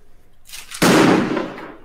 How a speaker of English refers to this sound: Okay, that's a firework.